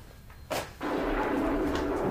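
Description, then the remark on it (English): A sudden sharp crack of thunder, followed a moment later by a loud, sustained rolling rumble that carries on to the end, with no voices. “It's thundering this end.”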